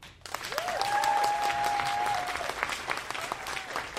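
An audience breaks into loud, steady applause lasting several seconds, voting by applause for the best tornado in a game, dense clapping filling the whole stretch, with a long sustained whistle riding over it early on.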